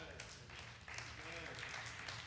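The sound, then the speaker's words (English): Sparse, uneven clapping from four people, scattered sharp claps rather than full applause, with a voice and faint crowd murmur underneath. “Four of you are clapping.”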